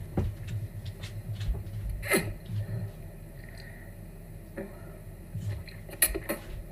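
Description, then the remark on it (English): A cup brought for drinking an alcoholic drink is handled, with a few sharp clinks and knocks scattered across the stretch. Softer rustling and handling noises fill the gaps, and no one speaks. “I brought a cup for drinking this alcoholic drink.”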